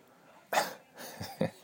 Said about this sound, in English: Dog's clearing her throat. She's getting old.